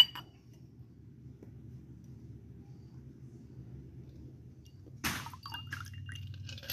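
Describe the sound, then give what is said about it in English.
A metal Hawthorne strainer clinks sharply against a glass once, followed by a faint trickle as a chilled Manhattan cocktail is strained in, all over a steady low rumble with no talking. “Every home bartender should have a strainer, also known as a Hawthorne strainer.”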